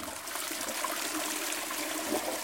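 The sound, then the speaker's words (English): A toilet flushing, a steady rush of water with a hissing, bright roar that holds evenly for a couple of seconds with no voices. “And I actually found, through my own experiments, that standing in front of the fridge when it was humming or flushing the toilet over and over again actually was neutralising the sound of the tinnitus.”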